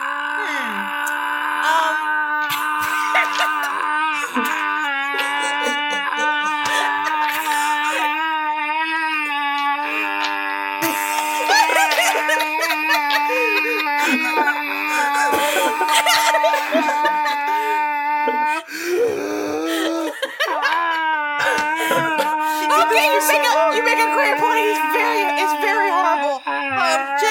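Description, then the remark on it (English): A prolonged, strained screaming wail rings out almost without pause, its high pitch wavering and cracking with tremulous vibrato, loud and steady throughout. “If you let him stop screaming, he can cast Zone of Truth, and then we can get to the bottom of all of this.”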